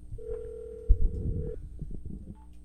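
A steady, single-pitched telephone tone hums for over a second after the line goes dead, a clunk of the receiver landing partway through, followed by faint handling noise.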